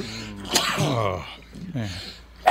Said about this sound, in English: I have to sneeze.